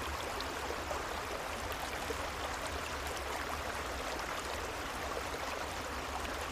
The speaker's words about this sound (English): And if you'd like, you can imagine you're laying beside a beautiful, gently flowing creek. And this sound of the creek will go on after the guided portion is over to help you fall deeply asleep.